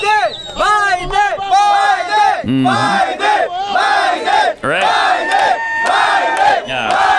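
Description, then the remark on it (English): A large crowd drawn by Biden shouts and cheers for him loudly and continuously, many overlapping raised voices forming a dense roar with rising whoops, sustained throughout. “Biden can indeed draw a crowd. Well, yeah, he drew this crowd.”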